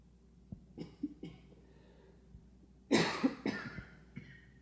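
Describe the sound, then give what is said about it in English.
A few soft coughs and throat sounds from people in a temple room during a meditation, then a louder, harsher burst of coughing near the middle, followed by a fainter cough, with no talking. “So there are the sounds in our room, coughs and people moving, or possibly a door or a chair moving.”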